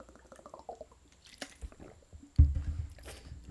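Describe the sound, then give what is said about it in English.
Sounds of someone drinking water during a pause in talking: a few wet sips followed by heavy, muffled gulps and swallows, with no talking. “Water break.”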